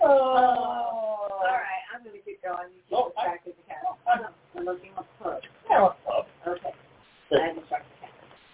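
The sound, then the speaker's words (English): A cat lets out a long, drawn-out meow at the start, followed by people talking. “You can distract the cat.”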